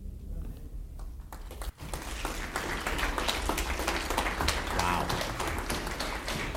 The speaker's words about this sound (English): Wow. Let's clap one more time for Dr. Fuller. Dr. Fuller, God bless you.